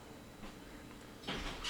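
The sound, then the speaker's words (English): A door is pulled open to let a dog in, with a brief scraping, rattling burst, followed by another short clatter at the end, set against a quiet background hum with no talking. “Your dog wants in, bro. Huh? Open the door.”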